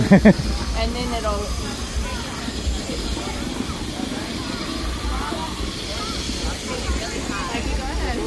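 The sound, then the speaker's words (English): A steady, loud hiss of steam escaping from an interactive ride prop runs throughout, with a brief thump at the start and indistinct voices talking faintly underneath. “Cause maybe all that steam builds nope.”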